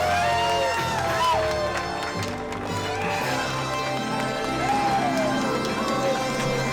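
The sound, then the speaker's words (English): A crowd roars steadily at the Kendama World Cup competition, with a dense wash of cheering and scattered shouts, a few rising and falling voices or whistles cutting through the constant, fairly loud noise. “Oh, it is a mixed crowd.”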